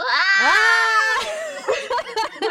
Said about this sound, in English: What a sad primal scream I have.